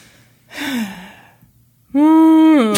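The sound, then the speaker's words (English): A person imitates whale calls with their voice: a breathy, wavering low moan followed by a louder, sustained tonal wail with rich harmonics that bends upward at the end. “Are you making whale sounds now?”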